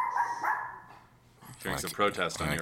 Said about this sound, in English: I'm going to kill that dog.